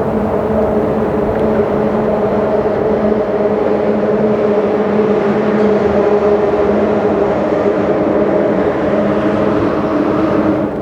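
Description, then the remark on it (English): A loud, continuous rumble of cars passing over a bridge, with a steady droning hum and roar that holds for the whole stretch without easing. No one speaks. “Calm when it's just the water, and chaotic when the cars pass by the bridge.”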